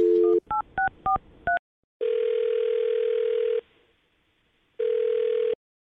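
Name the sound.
telephone number being dialed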